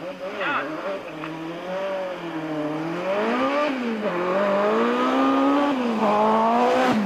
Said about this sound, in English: This engine is called the Cosworth BDT. It had a displacement of 1,803 cubic centimeters. It had fuel injection and a Garrett turbocharger. It was an inline four engine.